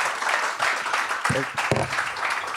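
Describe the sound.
A comedy show crowd claps steadily and densely throughout for a comedian leaving the stage, a loud unbroken wash of applause, with a couple of brief voices or cheers rising out of it partway through.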